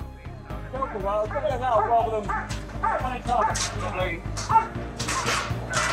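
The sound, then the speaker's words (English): A female police dog barks and yelps repeatedly inside a truck while the people inside are called out individually, loud, rapid bursts over a low engine-like hum, with indistinct voices murmuring in the background. “And then once I was happy that the numbers were down to just a couple left, then I took the dog out of the truck because there was no need for her to be there anymore.”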